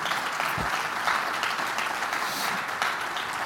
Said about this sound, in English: Would you clap your hands and thank God for his word?